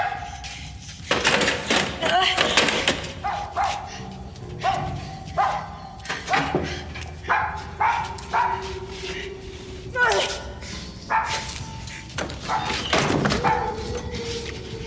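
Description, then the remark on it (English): A dog trapped in a well with a woman barks repeatedly in loud, irregular bursts, some yelping and whiny, with voices shouting underneath and muffled thuds mixed in. “Now, shut that dog up!”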